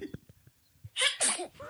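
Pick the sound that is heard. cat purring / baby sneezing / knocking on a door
baby sneezing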